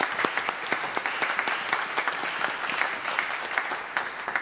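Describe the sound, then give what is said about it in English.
A church audience claps together in steady, sustained applause to thank the people who serve each Sunday in the TV broadcast room, many hands producing a dense, crackling patter at an even level throughout, with no voices over it. “So let's give them a round of applause this morning and thank them for their service.”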